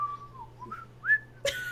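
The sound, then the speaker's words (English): A person whistles a short, casual, meandering tune with gliding pitch and a brighter rising note near the end, clear over a faint steady hum, with no one speaking. “I'm having such a nice, calm day that I'm whistling and skipping.”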